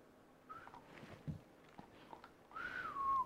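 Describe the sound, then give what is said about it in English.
Someone whistles a short note, pauses amid faint rustling, then lets out a longer, louder whistle that glides downward at the end. “Try to whistle it.”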